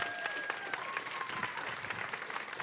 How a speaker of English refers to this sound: Everyone's like, oh, you're afraid to clap in church. That's part of my sermon today. Everyone, just clap. Just clap.